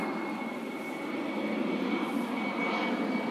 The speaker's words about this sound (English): So there is this foggy atmosphere, and the headlights, the lights of airplanes is shining so bright. I'll just shut up for a while now. And I think you can even hear the noise of airplane, how low it is flying.